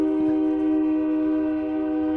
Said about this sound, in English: Sorry, we're joined by the loud... It's the loud train. I get different trains by my house. This one I recognize as being the louder one.